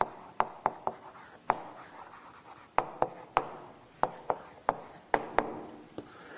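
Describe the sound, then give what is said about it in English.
Chalk taps and scrapes across a board in quick, uneven strokes, sharp clicks punctuating a soft scratchy rasp, with no one speaking. “Let me do it on this board.”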